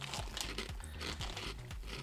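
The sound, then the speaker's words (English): Steady, crisp crunching as someone chews a barbecue potato chip, with bright crackly bursts repeating about twice a second over a low chewing thump. No one speaks. “These taste like a Ruffles barbecue chip.”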